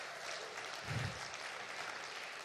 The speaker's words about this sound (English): Come on, let's give him a applause for that.